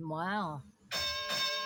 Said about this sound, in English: There's the bell. Bells are out.